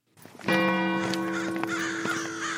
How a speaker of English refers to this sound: So we are on the approach to Maddingley Hall now. The sun is down, there are crows flying around, and it's looking very impressive and ever so slightly spooky.